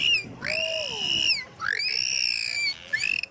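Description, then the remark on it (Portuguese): Dolphin song: a few bright, squeaky whistles that swoop up and down in pitch, coming in three separate calls with short gaps, clear, with no talking. “Do golfinho, eu agora depois peço ao meu primo para meter aqui uma música de um canto de golfinhos por cima disto.”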